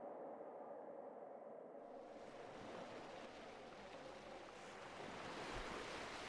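Harbour waves wash in a steady, unbroken rush with wind blowing over them, a full, constant seaside roar that holds at the same level throughout, with no voices.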